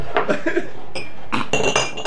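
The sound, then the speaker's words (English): Fine cutlery clinking and chinking together in a quick, irregular cluster of bright metallic taps, with a few sharper ringing hits near the end; no one speaks. “Put the fine cutlery back where you found it.”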